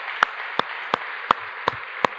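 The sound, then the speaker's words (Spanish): Steady audience applause for the events team, with one pair of hands clapping loudly in a slow, even rhythm, about six sharp claps standing out above the rest. “Le podemos dar un aplauso al equipo de eventos que está ahí atrás.”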